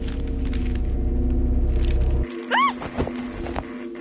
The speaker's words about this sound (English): The doorbell buzzer. It was the door buzzer.